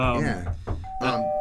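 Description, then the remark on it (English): A doorbell rings, ringing chime tones followed by a steady sustained tone that holds to the end, with people's voices and clatter mixed in around it. “Oh. Who could that be? Someone at the door.”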